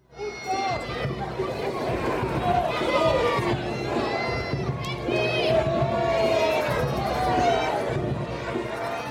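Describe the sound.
A rowdy crowd of revelers on dirt streets at Mummer's Fair, two days before Ember Night, fills the air with overlapping shouts, cheers and excited voices, a steady loud din of babble with high calls rising above it throughout.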